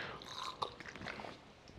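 Someone takes a quick drink: a short run of quiet, wet gulping and swallowing noises with small clicks and crackles, and no talking.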